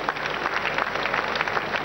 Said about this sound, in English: Once again, let's clap for wonderful Jesus Christ.